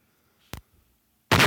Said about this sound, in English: Oh, fuck. Oh, his favorite explosion. His explosions.